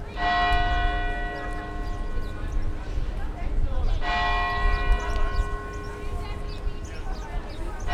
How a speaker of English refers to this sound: The bells of Old South Church rang out at the exact time of the explosions 10 years ago.